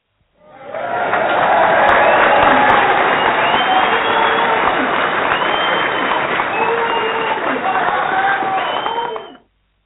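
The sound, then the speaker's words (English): A recorded round of applause played on The Filthy Dish show: a dense crowd claps and cheers for about nine seconds at a steady, loud level, with shouts and whoops rising above the applause before it cuts off abruptly. “Hey, guys, we're going to give you a round of applause that you're used to hearing.”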